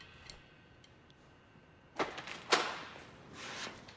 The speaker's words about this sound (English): I love how in the middle of that, he's so into it, then he looks up, hears the door slam, and he's just gone.